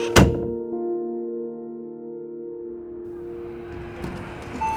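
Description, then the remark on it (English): A door slams shut with a single heavy thud near the start, followed by a low ringing tone that hangs and slowly fades for several seconds. “Close the door, will you?”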